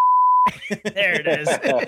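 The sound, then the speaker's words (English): A steady, pure censor bleep tone sounds for about half a second, then cuts off abruptly as lively, overlapping speech takes over. “The beep button. Oh, yeah. The cursing button.”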